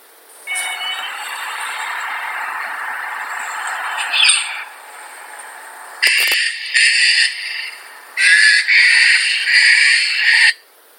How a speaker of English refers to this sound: By the way, the other day when I was walking around, I recorded this bird sound. It is a very common sound you will hear in Australia.